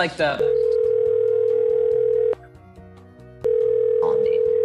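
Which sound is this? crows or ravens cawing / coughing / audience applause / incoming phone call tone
incoming phone call tone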